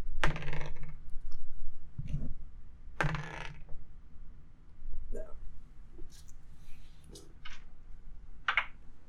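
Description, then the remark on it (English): Dice are rolled across a tabletop by a player trying to beat 18, clattering in a series of sharp, irregular clicks and knocks, fairly loud, with quieter rattles trailing off between the hits. “Roll your dice and see if you get a higher than an 18 first.”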